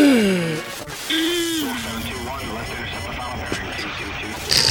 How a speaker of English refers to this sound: So now we're just going to do a show of yawning. It's just going to be a show all about yawning.